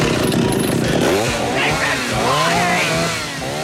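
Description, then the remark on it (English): A loud chainsaw engine revs continuously, its pitch surging up and dropping back several times over a dense, rough mechanical roar, as a person in the back of a truck pulls out the chainsaw. “And the person in the back of the truck, which looks like a giant shambling corpse, is like going crazy and then pulls out a fucking chainsaw.”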